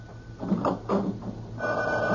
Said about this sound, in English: Now cut off the phone by the bed. Quick!